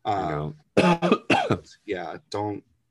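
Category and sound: human body sound, coughing and throat clearing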